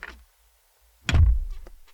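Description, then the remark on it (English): A studio door is pulled open with a faint rustle, then slammed shut in one loud, booming thud that rattles briefly and fades with a low rumble. No one speaks. “Open it and slam it.”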